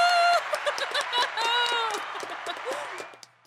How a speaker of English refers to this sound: Everyone just heard the reverb in this tiny room. Yep. From our claps.